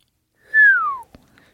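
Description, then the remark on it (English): A single low whistle, a clear tone that glides steadily downward over about half a second before fading, followed by a soft click. No one speaks. “Before he could stop himself, Norris let out a low whistle.”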